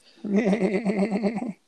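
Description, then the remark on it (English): A person imitates a sheep bleating: one sustained, rapidly stuttering vocal baa lasting about a second and a half, fairly loud, with no other sounds around it. “Sounds like a sheep that's swallowed a bad machine gun.”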